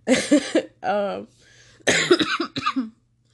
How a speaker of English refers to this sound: Sorry, I had to cough.